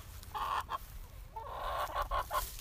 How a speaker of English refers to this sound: Next, we have Latte the chicken.